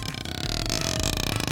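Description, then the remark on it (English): A wet, squelchy fart noise from squished fart putty, a loud, rough sputtering that runs continuously for a second and a half, with no voices. “You just got a gigantic power-up, and all you can do is make fart sounds?”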